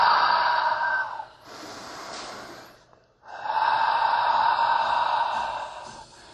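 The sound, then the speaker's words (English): Deep, audible breaths during a yoga pose: a long breathy exhale, a softer inhale, a brief pause, then another long, full exhale. No one speaks. “Give me three of your deepest, fullest inhales and exhales.”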